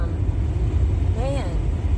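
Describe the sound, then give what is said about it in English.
Steady whooshing of a car's air conditioning being turned on, blowing over a low idling engine rumble, with a brief rising tonal chirp partway through. “I need to turn the air on.”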